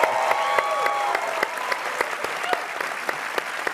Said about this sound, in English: Everybody, big clap for Chris. Hi, Chris.